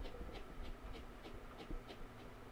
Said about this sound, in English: God, those footsteps sound so good. I kind of enhanced them. Did you? Yeah. You EQ them or just boost them? What I did was there's like digital noise from the video, so I had to take all of that out to make it silence